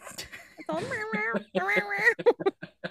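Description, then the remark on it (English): A cat meows twice in long, wavering, drawn-out cries, fairly loud, followed by several short clipped vocal bursts. “It's all I can hear is this cat.”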